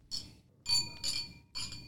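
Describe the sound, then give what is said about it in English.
Wine glasses of Malbec clink together in a toast four times in quick succession, each bright tap leaving a short ringing tone, fairly loud, with a faint murmur underneath. “Cheers.”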